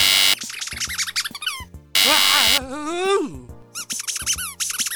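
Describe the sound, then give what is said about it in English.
Two harsh, loud electric buzzes from a joke buzzer wired to people with electrodes, each followed by high squeaky yelps and wavering vocal cries, then another burst of squealing. “So, when you do something annoying, I buzz you.”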